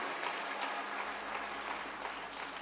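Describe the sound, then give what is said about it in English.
An audience gives a hand clap for the ladies, clapping in steady, sustained applause, a dense wash of many overlapping claps at an even loudness with no voices standing out. “Let's give these ladies a hand clap.”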